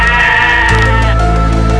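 A sheep bleats loudly, one long wavering call that shifts pitch partway through and fills the whole moment, with no voices present.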